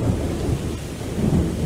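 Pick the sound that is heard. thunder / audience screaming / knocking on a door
thunder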